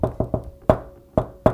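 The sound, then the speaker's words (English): Someone knocks on a door with sharp, resonant raps: three quick knocks, then three more spaced out more slowly, fairly loud with a hollow wooden ring. “What's going to happen after that if you have a knock on the door?”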